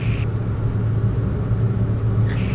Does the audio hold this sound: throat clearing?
no